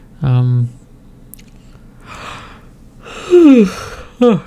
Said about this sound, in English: Sorry for yawning again.